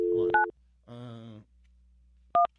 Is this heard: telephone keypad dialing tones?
yes